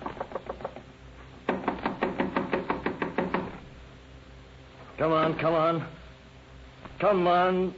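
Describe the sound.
Rapid, insistent knocking on the door of room 16 in a rooming house, in two bursts, loud, followed by a man's voice calling out in short shouted phrases.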